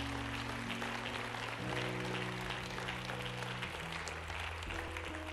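An audience claps steadily as a clap offering of praise to the Lord God, a dense, continuous wash of many hands throughout, with sustained low keyboard chords shifting underneath. No one speaks.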